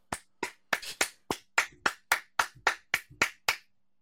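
A single person claps about a dozen times in a steady, slightly uneven rhythm, each clap sharp, with no talking in between, applauding the Pittsburgh Steelers.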